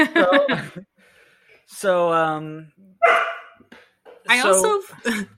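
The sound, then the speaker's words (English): Joel McRae imitates a seal as water comes down on him, letting out about four loud, honking barks in uneven bursts with short silent gaps between them. “I also found it funny that Joel McRae, for some reason, likes to bark like a seal.”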